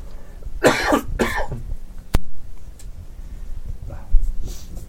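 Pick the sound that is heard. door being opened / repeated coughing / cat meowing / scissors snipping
repeated coughing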